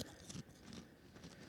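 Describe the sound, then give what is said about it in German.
Crackly crunching of chips being chewed, a steady run of brittle bites and grinding with a few sharper snaps, fairly soft and with no talking. “Ich esse Chips.”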